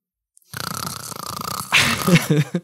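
A loud, rasping snore from someone asleep wearing headphones in front of a television: a long, rattling inhale that swells into a harsher, throatier snort before trailing off, with no talking.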